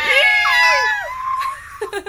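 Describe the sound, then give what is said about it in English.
Several people imitate dolphin noises: high, squeaky squeals, overlapping pitch glides that rise and fall for about a second and a half, ending in a few breathy, giggling bursts. “And everybody made dolphin noises.”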